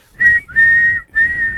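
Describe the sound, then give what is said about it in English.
A whistle blown in three quick, loud blasts, the middle one held a little longer, each a steady shrill tone with no voices. “Blow the whistle.”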